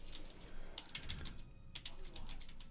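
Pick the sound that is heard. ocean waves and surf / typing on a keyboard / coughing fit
typing on a keyboard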